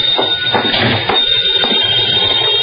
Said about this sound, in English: As I walked in the door, the phone was ringing.